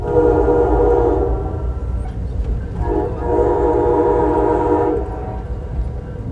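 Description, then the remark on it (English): A passenger train running along the coastline rumbles steadily along the rails, with a loud, continuous low roar and a droning harmonic whine that rises twice, heard from on board without any talking. “That built environment threatened by rising seas includes oceanfront homes, roads, piers, power plants, and this very train I'm riding on.”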